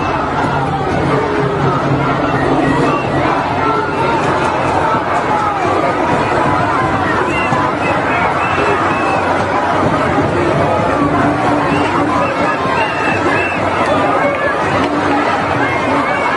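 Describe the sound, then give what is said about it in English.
A large protest crowd in a London street chanting "to the river, to the sea" and shouting together, a dense, steady roar of many voices that stays loud and unbroken throughout, with no single speaker standing out. “All chanting to the river, to the sea, right?”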